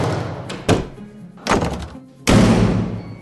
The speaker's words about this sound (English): Doing this helps keep the smoke and fire from spreading. And this definitely helps keep your neighbors safe and firefighters fight the fire. That's right. Close the door.